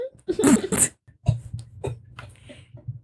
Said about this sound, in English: She's actually choking. It's not nicotine. I swallowed wrong. No. I literally swallowed wrong and you know when you just can't stop? Yeah. I just took a sip of water.